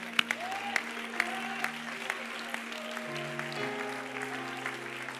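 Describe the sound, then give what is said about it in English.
A church audience claps in praise of the Lord in scattered, uneven bursts of sharp slaps while sustained organ-like chords hold steady underneath, with a gliding tone rising briefly early on. “When it's all said and done, can we give the Lord a clap of praise?”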